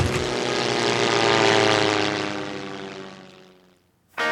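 A propeller airplane engine drones loudly with a steady harmonic hum as the plane lands, then gradually fades and winds down over a few seconds before a sudden new burst of sound cuts in at the end.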